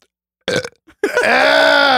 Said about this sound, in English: I can make myself burp, like, on command.